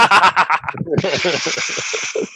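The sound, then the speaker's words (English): Tinfoil is rustled and crinkled as mock applause: a steady, bright, hissing crackle that starts about a second in and runs to the end, with voices talking underneath. “You know, that sounds more like a rustling of like tinfoil.”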